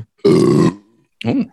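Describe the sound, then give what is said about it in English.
A loud burp lasting about half a second, followed shortly by a brief guttural, voiced aftershock sound, like a second small belch. “Aftershock. All right, burps 8 now.”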